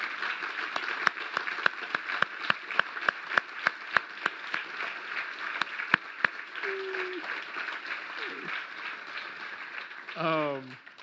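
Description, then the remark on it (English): A church audience applauds members who stand to be recognized for being part of the church's first year, in a dense, steady wash of clapping with a few sharp louder claps, lasting about eleven seconds. Brief whoops and a rising whistle-like cheer rise above it near the end. “if you were a part of that first year, we'll just say the first year at Coastal at the old Exchange Building, will you please stand so we can recognize you and we can give you a round of applause?”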